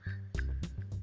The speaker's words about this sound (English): Let me get a sip of water. I try to be like loud on purpose so I can throw a little ASMR in there. That's me drinking water. That's the sound of water sliding down my throat.